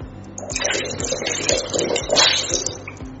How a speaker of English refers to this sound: And we add water to it.